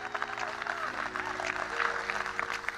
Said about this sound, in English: Sure, Lord, can we clap? It's good to be in God's house, isn't it?